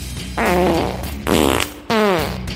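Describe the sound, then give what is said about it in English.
Three loud, buzzy fart sound effects in an intro theme jingle blare in quick succession, each a drawn-out rasp, over a faint low musical backing with no talking. “Brain farts.”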